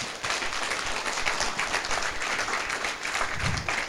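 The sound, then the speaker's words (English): A crowd claps together unto the Lord in a steady, dense wash of applause that fills the whole stretch, many hands overlapping at a fairly even loudness, with no voices standing out. “I thought we'd give a clap unto the Lord.”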